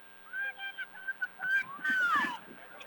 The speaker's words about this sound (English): And the official blowing the whistle here will make sure that Salmon River is in the area they're supposed to be. The infraction happened just outside the left side of the box.